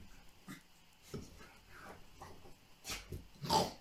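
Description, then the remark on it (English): A dog makes snuffling, wheezy noises in a studio, a few short breathy bursts and a louder snort near the end, with no talking. “Why do we let the dog in the studio when it does stuff like that all the time? Can you hear that?”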